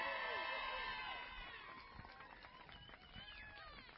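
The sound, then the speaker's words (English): A church audience cheers and whoops for a team of 10 adults and 8 kids on stage, loud at first and then tapering off into scattered shouts and chatter from many voices. “We can do better than that. Let's hear it for this team.”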